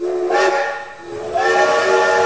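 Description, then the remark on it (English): A steam train whistle sounds twice, loud: a chord-like shriek wrapped in hissing steam, a brief dip between blasts, the second one longer and sustained to the end. “Get on I think it's City like train. Choo-choo.”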